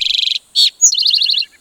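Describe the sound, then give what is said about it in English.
An Eastern towhee calls, a quick run of bright chipping notes, a short buzzy note, then a sharp high note falling into a rapid, ringing trill, with no other sounds. “Towhee is an onomatopoeia that can stop you in your tracks.”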